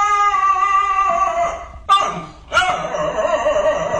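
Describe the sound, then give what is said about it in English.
A dog gives a strange, drawn-out howl of steady, harmonic-rich tones, broken twice by short abrupt yelps before the wavering howl resumes, loud and alone. “We got a dog with a weird howl. Let's hear it.”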